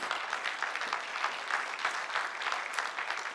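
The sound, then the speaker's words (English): A church audience claps for the Lord together in a dense, steady burst of applause that holds at an even loudness for a few seconds, with no voices breaking through. “Yeah, give the Lord a clap.”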